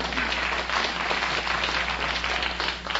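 An audience applauds steadily for about three seconds, a dense, even wash of many hands clapping at once with no voices over it and a faint low hum underneath.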